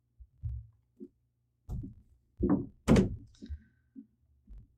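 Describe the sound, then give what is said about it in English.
An office door swings shut with a solid thunk, surrounded by a handful of softer bumps and thuds like footsteps or movement; no one speaks. “Shut the door behind you if you wouldn't mind.”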